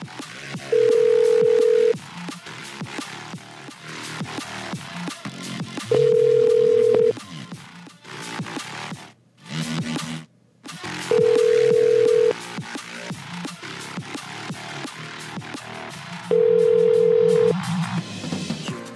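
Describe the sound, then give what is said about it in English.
A phone call rings out unanswered: four steady ringback tones, each about a second long and evenly spaced several seconds apart, sounding clearly over busy background music. “Now no one's gonna pick up the rest of the night.”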